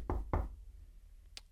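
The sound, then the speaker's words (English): Two firm, heavy knocks on a door in quick succession, followed by quiet with a faint higher tap near the end. “And they go knock on that door. And they knock on that door.”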